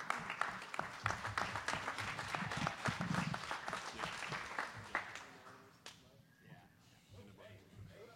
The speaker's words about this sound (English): A round of applause for everybody on the stage, guys.